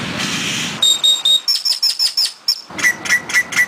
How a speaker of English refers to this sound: So again, lots of grackles, but before you ever see one, you'll hear it. They sound like a slide whistle, murmurs, clucks, chirps, and even weird robot noises.